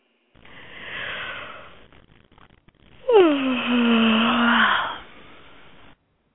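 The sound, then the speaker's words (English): A woman yawns: a long, breathy inhale, then a loud voiced exhale that slides downward in pitch before trailing off into a soft breath. No talking. “That was a female yawn.”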